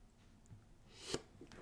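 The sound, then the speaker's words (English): A single sneeze: a rising breathy intake, then a sharp, noisy burst, followed by a brief rustle at the end. It's not loud, with no talking. “Bless you.”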